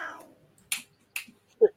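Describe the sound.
Cats squabble with a door between them: two sharp, hissing spits a moment apart, followed by a brief, strained meow. A faint voice trails off just before.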